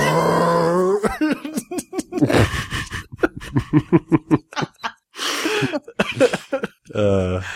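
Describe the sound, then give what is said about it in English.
A person imitates how a voice would sound if film footage were slowed down, with deep, drawn-out vocal groans and choppy, stretched syllables, loud and alone, with a low moaning tone at the start and end. “No, because if they slow it down, it would be like.”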